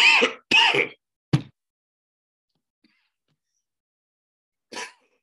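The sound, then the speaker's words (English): Harsh coughing: two rough bursts in quick succession and a short hack, then a few seconds of silence before one last cough. No talking. “I'm coughing.”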